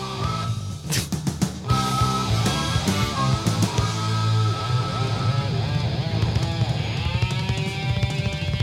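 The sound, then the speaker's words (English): Loud, dense rock music played live, with an electric guitar part that switches from one stereo channel to the other, with sharp strummed hits early on, sliding, bending lead notes and a little feedback over a steady band. “Did you hear that? Stereo, it switched. Yeah. Stereo guitar.”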